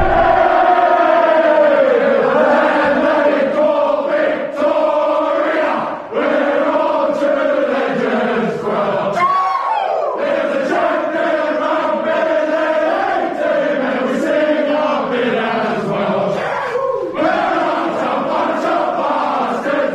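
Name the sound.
stadium crowd cheering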